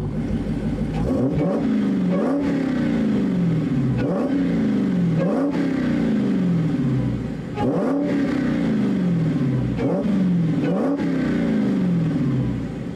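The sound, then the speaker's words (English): The loud, supercharged 6.2-liter Hemi V8 engine of a Dodge Demon, over 700 horsepower, revs hard in repeated bursts, roughly every two seconds, each rev climbing quickly then dropping back, with a deep rumble and a steady mechanical whine throughout. “The next runner-up is the Dodge Demon 6.2 liter V8. That's a Hemi, baby.”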